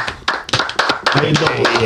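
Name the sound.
golf clap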